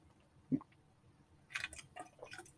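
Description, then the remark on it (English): A quiet series of sounds of a person drinking water: a soft thump of a cup, then wet sips and a swallow or two with little liquid squishes, no talking. “I got to take a drink, which I'm going to have to take a lot of because I've been working outside today and my mouth is super dry.”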